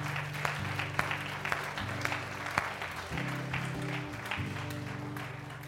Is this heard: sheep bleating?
no